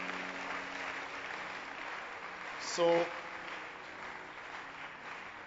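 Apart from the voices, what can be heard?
audience hand clapping applause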